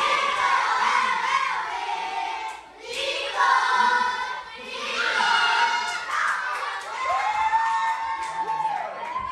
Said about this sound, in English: Living on Earth's Bobby Bascom recorded these first and second graders cheering on the home team.